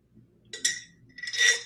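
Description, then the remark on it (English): Someone drinking from a glass of water: two short, bright glassy clinks and rattles, the second one longer and louder, with no talking. “Actually, since I've been talking for 40 minutes, let me take a drink of my water.”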